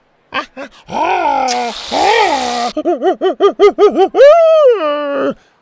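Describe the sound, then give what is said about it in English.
A voice imitates a gleeful monkey howling happily as it squirts frosting into its mouth. Loud wavering howls and a raspy screech, then a quick rhythmic run of hoots ending in one long rising-and-falling whoop. “Once he found a nice place to perch himself, high up in the open ship, he squirted the frosting into his mouth and howled happily.”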